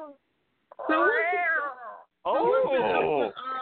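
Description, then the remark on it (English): Two long, drawn-out cat meows, loud, with wavering pitch. The first swoops and fades, and after a short pause a second, harsher yowl follows. “Meow, kitty, kitty, bozo.”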